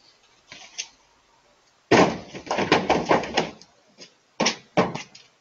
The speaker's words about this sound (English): That sound, if you didn't see it like we did, is the sound of a deer leaping over another car in the driveway and crashing into the side of that pickup truck. Y'all don't realize you didn't see it, how far that deer jumped.